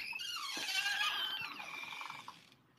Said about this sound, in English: What? Did you just open a screen door? Yeah, I had to get my food. Okay. It sounds like you're recording in a haunted house.